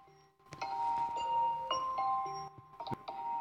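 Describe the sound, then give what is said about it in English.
A gentle alarm clock chime plays a soft melody of bright, sustained bell-like tones, several overlapping notes ringing in a steady sequence with no voices. “But some of you wake up to this nice, pleasant-sounding thing that goes on.”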